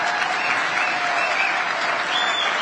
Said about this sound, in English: Just an applause line.